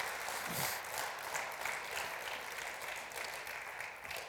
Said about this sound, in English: Let's applaud him for his victory and his glory and his power. Come on, guys.